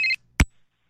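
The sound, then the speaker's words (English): A brief electronic phone ringtone beep for an incoming call sounds alone, loud, then cuts off and is followed by a single sharp click, like a handset being picked up. “Oh, look at that. We got a phone call.”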